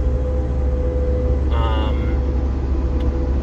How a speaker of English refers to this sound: What the fuck is this truck running on?